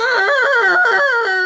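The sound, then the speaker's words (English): A human voice imitates a red deer stag's bellow with one loud, sustained call lasting over a second. The pitch wavers up and down in a strained, whining tone. “That is, I don't know if you've heard deer sounds. That's what they sound like.”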